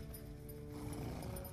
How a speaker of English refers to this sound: The king and Reggie, along with the pilgrims and the children, ride in a wagon pulled by a horse. They head up to that snow-covered mountain for a thrilling sledding competition.